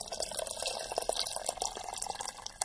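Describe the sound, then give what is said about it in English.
Just-boiled water at about 80 degrees Celsius pours steadily into a pot to brew tea, enough for four cups, a continuous splashing trickle with small bubbling bursts, fairly quiet and heard alone. “So I'm pouring the just boil water. It's about 80 degrees Celsius.”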